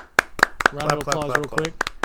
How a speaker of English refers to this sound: So round of applause real quick.